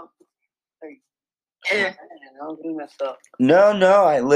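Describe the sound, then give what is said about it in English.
A sharp throat clearing and a short cough, fairly loud, followed by a few rough vocal noises before someone starts talking. “I was coughing.”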